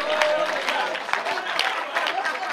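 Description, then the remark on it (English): A church audience claps steadily during a sermon for a couple of seconds, a dense wash of many hands with scattered sharper claps, fairly loud and continuous, with some indistinct crowd noise mixed in. “You are not clapping because I'm preaching to you.”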